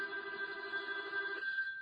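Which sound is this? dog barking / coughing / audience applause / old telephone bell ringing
old telephone bell ringing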